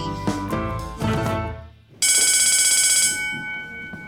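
After a couple of seconds of brief tonal sounds, a school bell marking recess bursts in, ringing loudly with a fast, rattling clang for about a second before cutting off, leaving a faint lingering hum.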